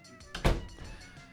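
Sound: door being shut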